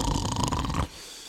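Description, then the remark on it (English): A single loud, raspy snore with a rattling, fluttering texture, lasting under a second before cutting off to a quiet background hiss. “that is then almost immediately undercut with the gorgeous sounds of farting, snoring, and meowing cats.”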